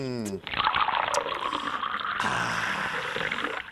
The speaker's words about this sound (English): Let me take a sip of my Diet Coke.